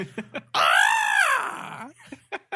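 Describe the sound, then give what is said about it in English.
A person imitates the Wilhelm scream with one loud, drawn-out yell that rises and then falls off over about a second, framed by brief faint vocal sounds before and after. “Man, I wish I could do a Wilhelm scream.”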